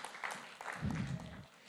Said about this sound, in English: Come on, give the Lord a clap this morning.